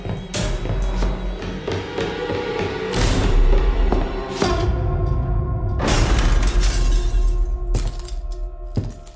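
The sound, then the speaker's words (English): A door is smashed in with a series of loud, heavy crashes and splintering bangs, several forceful impacts over about nine seconds amid a continuous rumbling clatter, with no voices. “Oh, crap! The door!”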